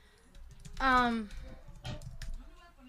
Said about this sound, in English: And then my friend is typing away.